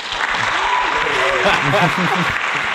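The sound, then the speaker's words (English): A steady, dense round of applause fills the whole stretch at a constant loud level, with voices talking and cheering over the clapping. “Let's give that a round of applause right there.”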